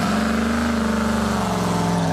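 A powerful race truck engine putting out nearly 700 horsepower revs loudly and steadily, its deep rumble rising slightly in pitch with a harsh, throaty roar and no voices.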